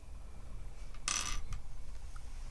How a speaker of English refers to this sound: You can tell just by dropping the puzzle pieces all over the... Sounds like a put-together.